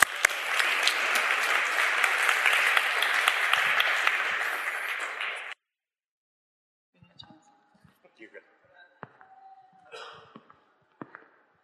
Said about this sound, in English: Please welcome them with a warm round of applause.